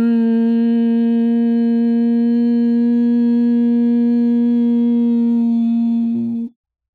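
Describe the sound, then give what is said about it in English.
A person hums one long, steady note like a buzzing bumblebee while breathing out all their breath during a breathing exercise, holding an even, buzzy pitch for about six seconds with no other sounds before stopping abruptly. “The humming sounds like a bumblebee.”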